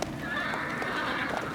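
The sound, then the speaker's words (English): A horse named Gertrude, urged on by its driver in heavy rain, lets out a high, wavering whinny while its hooves clip-clop steadily underneath, the whole short burst holding an even loudness with no voices present. “Come on, Gertrude, giddy up.”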